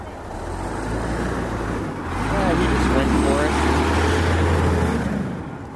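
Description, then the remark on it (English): A bus rumbles past on a busy street, its deep engine drone swelling louder midway through before easing off, with steady traffic noise around it. “Watch out for that bus, would you?”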